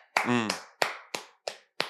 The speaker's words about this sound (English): Man, I want to start this off with a round of applause for two black men that I'm excited for right now. Who that? Round of applause for Shannon Sharpe.